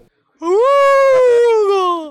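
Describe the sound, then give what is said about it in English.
A single long, sustained vocal call rises then slowly falls in pitch, a person imitating a little space whale's song with a moaning, tonal wail lasting nearly two seconds. “pretending to be like a little whale.”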